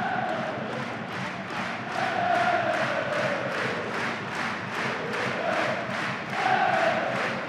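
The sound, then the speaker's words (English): A football crowd, the 'bantam roar', roars during a corner kick in a dense, sustained wall of voices, swelling louder in waves with rhythmic pulses of chanting running through it. “Listen to that roar. The bantam roar.”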